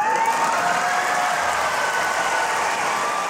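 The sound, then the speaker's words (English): A debate audience cheers and applauds steadily after a line by Kamala Harris, a dense wash of clapping and whooping voices that stays loud and even throughout, with no speech over it. “You hear the crowd?”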